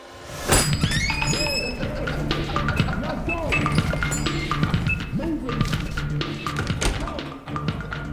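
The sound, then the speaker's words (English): A door swings open with a sharp knock and a brief ringing tone, giving way to the busy murmur of indistinct voices and small clinks inside a record shop. “We had to start with a door open.”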